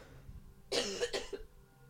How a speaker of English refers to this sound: That cough hurt my chest.